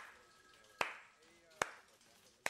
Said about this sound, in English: Gary, what are you doing? I thought it was a good moment for a slow clap. No?